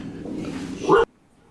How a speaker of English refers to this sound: We're getting some barks from Ripley right now